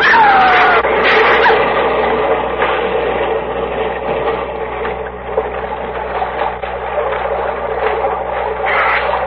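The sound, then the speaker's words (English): A plane, levelled off by its pilot, crash-lands on top of the sea: a loud, steady mechanical roar with a whining tone at the start, rough churning bursts, and no voices. “We're going to hit the water.”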